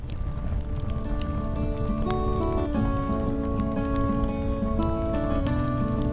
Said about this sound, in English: Do I hear a campfire? Ooh, do I hear a campfire tune?